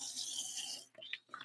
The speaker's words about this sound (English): Excuse me here while I take a sip of water.